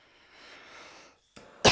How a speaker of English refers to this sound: I'm sorry, I'm coughing in the mic, guys. I blew it. I really try not to do that because I know some people do listen to this with headphones and shit.